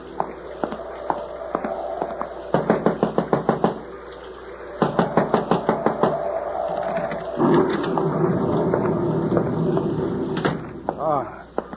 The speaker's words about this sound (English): You knocking.